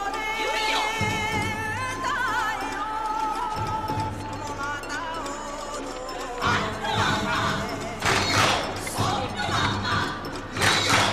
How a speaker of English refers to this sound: In the shot where we actually see him banging on the drums, how many visible drum hits will we see? It's going to come quick.